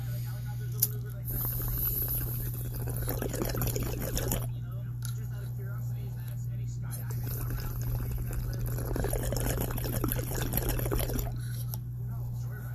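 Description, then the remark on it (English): Two bursts of gurgling water bubbling, a few seconds each, from someone smoking a water pipe, with a quieter pause between them and a steady low hum underneath. “Shit, I love smoking on the water pipe, man. Just kind of clears it up real good.”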